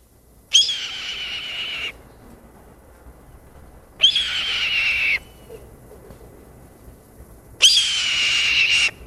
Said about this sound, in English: Now I'm gonna play the red-tailed hawk so that you can hear what it sounds like. Here we go. Red-tailed hawk.